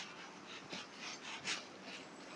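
A dog breathes and snorts, a run of short, airy huffs with a couple of sharper snorty bursts, fairly soft overall and with no one talking.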